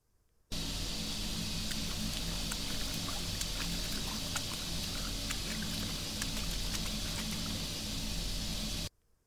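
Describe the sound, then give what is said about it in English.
Water splashes and sloshes in a steady, continuous wash for about eight seconds, dotted with small sharp drips and clicks, loud, with no voices, captured on a digital recorder in a guest bedroom. “Do you hear the sound of water splashing around?”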